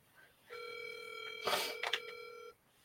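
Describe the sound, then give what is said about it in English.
A single steady electronic telephone tone rings out for about two seconds as a phone call is placed, broken by a couple of brief noisy clicks in the middle, with no voices. “Let me call Mr. Allen, and we'll get this show on the road.”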